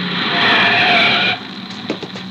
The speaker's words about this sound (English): I'm starting the motors.